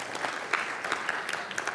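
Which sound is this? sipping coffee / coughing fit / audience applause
audience applause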